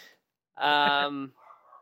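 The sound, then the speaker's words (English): A dog lets out one drawn-out, tonal bark, fairly loud, with a faint murmur of background sound trailing after it. “Dog's doing it running in the podcast.”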